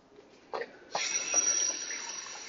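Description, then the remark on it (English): A faucet turns on with a couple of clunks, then a steady stream of tap water pours into a measuring cup, filling a full cup of water for cooking rice, hissing fairly loud with no talking. “So for me, I like to make a half a cup of rice and then a full cup of water and just follow the instructions from there.”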